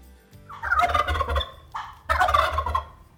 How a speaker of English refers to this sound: I'm …, your host this week, as we take a look and listen to the wild turkey.